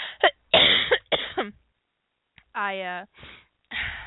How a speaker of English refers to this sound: You know, the thing is I have asthma, so I cough a lot in general anyway.